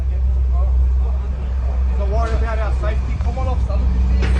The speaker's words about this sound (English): The fucking bus came for no reason.